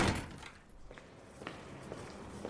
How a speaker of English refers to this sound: And he just gestures you out the door and closes it behind you.